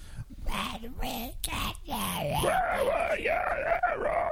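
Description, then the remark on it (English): A voice demonstrates inhaled metal-style screaming, made by inhaling: a few short, strained, gritty bursts, then a longer sustained wavering scream that rises and falls in pitch, with no talking. “It's just like inhaling in weirdly.”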